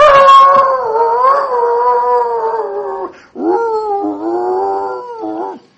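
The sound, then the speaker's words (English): A dog howls loudly out back in two long, wavering, tuneful cries, the first sustained for about three seconds, then a brief pause before a second, slightly wobbling howl. “Got a kind of a musical howl.”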